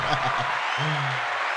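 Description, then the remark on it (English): A steady applause sound effect: a dense wash of clapping that holds at an even level throughout, with a voice briefly speaking over it partway through. “I'm going to let the applause ride.”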